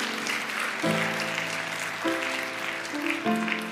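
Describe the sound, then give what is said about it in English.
A church audience claps steadily in a dense, even wash of applause for 33 people about to be baptized, while soft sustained keyboard chords play underneath, changing pitch a few times. “Yeah, you clap for those people.”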